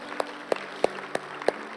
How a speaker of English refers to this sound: Amen. Come on, let's give God a round of applause today.